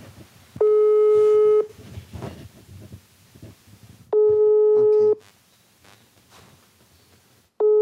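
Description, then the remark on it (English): A phone line rings out on an outgoing call to a 23-year-old Honduran migrant: loud, steady one-second tones separated by long pauses, repeating three times, with faint voices murmuring in the background between rings. “for the last few days, Josue hasn't picked up his phone. I'm going to call him right now.”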